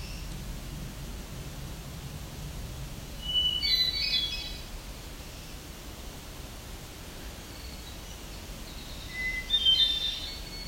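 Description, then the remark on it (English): Two short, buzzy, high-pitched phrases of black-throated warbler song, about six seconds apart, rising out of a steady background hiss with no voices. “So you can kind of compare black-throated green, black-throated blue here, and how they sound like they have the same voice.”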